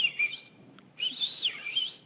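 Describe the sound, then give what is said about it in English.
A shepherd's soft, breathy whistle to a lamb in two short bursts with a brief pause between, the pitch sliding and warbling gently like a quiet call to an animal, with no talking. “And he whispers a whistle.”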